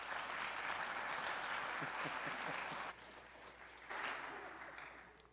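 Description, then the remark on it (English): A crowd in a church claps steadily as a man walks up to the front, a dense, sustained wash of applause that dips briefly around the middle, swells again, then tapers off toward the end; no voices stand out. “Give him a hand clap as he walks up here.”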